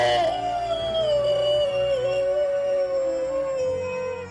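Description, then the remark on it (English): A man holding a body in his arms howls at the moon: a single long, loud howl holding one steady drawn-out note for about four seconds, sinking slightly in pitch toward the end, with no talking. “He stands up with her body in his arms and howls at the moon.”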